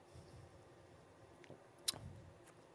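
Quiet mouth sounds of people taking small sips of whiskey: a few soft wet slurps and a sharp little click against a low, hushed background, with no talking.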